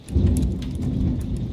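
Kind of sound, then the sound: nature, thunderstorm with heavy rain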